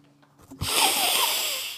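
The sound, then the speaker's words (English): A person imitates a long, forceful sniff of cocaine through the nose, a loud hissing inhale that starts abruptly after a brief quiet moment and holds steady for over a second. “After that sniff, we're going to probably have to afford it at this point.”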